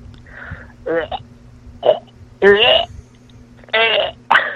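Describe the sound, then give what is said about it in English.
A voice imitating gagging: a string of strained, choking retches in short bursts, some rising into croaky, throaty heaves, with brief pauses and a faint steady hum beneath. “What about gagging?”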